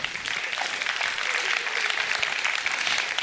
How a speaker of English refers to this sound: And you can applaud that.